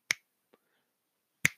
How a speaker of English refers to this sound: I'm sorry, I can't snap today.